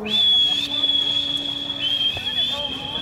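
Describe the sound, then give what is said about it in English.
Someone whistles to call a dog: one long, high, piercing note, held steady for about three seconds with a slight waver and a small dip in pitch partway through. “I'm a good whistler. I learned to whistle once I got a dog.”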